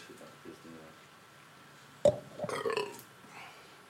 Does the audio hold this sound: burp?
yes